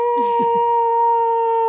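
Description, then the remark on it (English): A person imitates a wolf howl, holding one long, steady, fairly loud note for nearly two seconds, with a few brief low vocal sounds near the start and no talking. “And then they hear wolf calls from outside the city of the wolves I've just woken up.”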